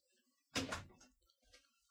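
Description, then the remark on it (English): A door is opened: a sharp latch clunk and rattle that fades quickly, followed by a few faint shuffling knocks. “Oh, hey, let me open the door.”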